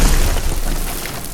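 A loud, heavy smash as a massive uppercut punch breaks a hole through a ceiling, with a deep booming thud and crumbling debris that rumbles on and slowly fades. No voices.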